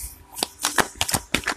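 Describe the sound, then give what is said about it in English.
Cards being shuffled before a card reading, a series of quick crisp riffling bursts with short pauses between them, fairly loud and with no talking. “I am going to do a shuffle for the cards.”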